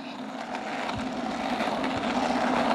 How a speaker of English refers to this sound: There goes that skateboard.